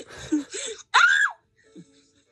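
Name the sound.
heavy breathing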